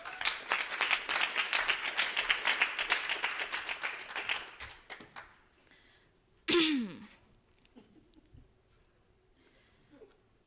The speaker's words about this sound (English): She's going to come up and perform as our featured student reader for this iteration of the open mic. Let's give her a warm round of applause.